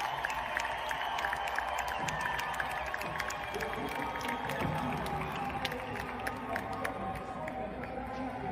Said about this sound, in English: There's like a, I guess it was like a tournament, or not a tournament, but it's like a swim meet for the NCAA. And they're giving out the medals here. So. They're cheering for the second place person right now.